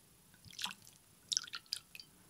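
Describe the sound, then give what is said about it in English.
Alcohol splashes and sloshes into a container with Edible Shimmer Super Pearl shimmer powder, mixing it, in a few short, wet, quiet bursts, with brief pauses between the drips and swirls and no talking. “I wonder if the alcohol will mix, will kind of like really mix it up in there.”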